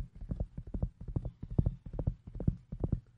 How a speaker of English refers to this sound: They began to gallop on their horses towards the gorge.